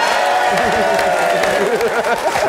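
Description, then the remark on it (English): A crowd applauds steadily and loudly for guest Michael Portillo, a dense wash of clapping with whoops and cheering voices rising over it throughout. “I know, but just, we can't applaud him on some... Mr. Michael Portillo!”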